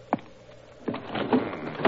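A card-room window that had been left open being pulled shut: a sharp knock, then a grinding, scraping slide punctuated by a few more wooden thumps, with no voices.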